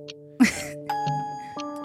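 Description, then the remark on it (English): A single sharp sneeze bursts out loudly over steady, sustained musical tones that shift pitch a couple of times afterward. “Bless you. Mama Weber is right.”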